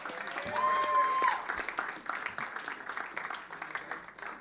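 A crowd applauds a guitarist who has just played a song, with dense, steady clapping that swells quickly, peaks in the first second, then continues at a slightly lower level; a brief whistle cuts through early on.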